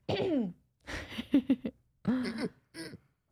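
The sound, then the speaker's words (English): A woman scratches her throat, making a raspy, guttural noise in four or five short voiced bursts with rough, scraping texture and brief pauses between them. “does that weird noise to like scratch her throat or something.”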